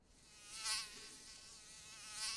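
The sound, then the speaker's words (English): A fly buzzes around a room in a steady, whining drone, swelling louder twice as it swoops nearer and then drifts back, with no voices present. “You hear me, you buzzing cunt? Fuck off and leave me alone.”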